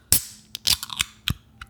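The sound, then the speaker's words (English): A can of Oso 100% Grenache rosé wine popping open: one sharp, crisp crack of the tab, then a few brief bursts of fizzy hissing over the next second and a half. No one speaks. “And do you have your can handy? Let me just pop it open.”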